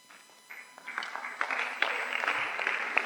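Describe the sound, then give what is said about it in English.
An audience breaks into applause during a sermon. The clapping starts faintly and swells within a second into steady, dense clapping from many hands that carries on without any voices. “Don't clap to a message you don't understand.”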